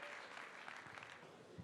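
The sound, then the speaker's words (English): An audience applauds steadily as a guest speaker is invited up to join the host, a dense wash of many hands clapping at an even level throughout, with a few sharper claps standing out near the end. “And give him a round of applause.”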